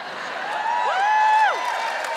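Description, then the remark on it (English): A live audience cheers steadily for about two seconds when asked to cheer if they could be more involved in how Wellington is run, a dense wash of voices with a few high whoops rising and falling above it, swelling slightly in the middle before settling. “Just give us a cheer if you think you could be slightly more involved than you are in how Wellington is run.”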